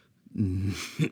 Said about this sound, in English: No, Luke sighed, coughing again.